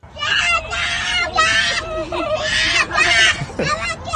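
little boy screaming

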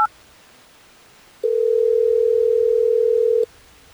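telephone dialing and ringing

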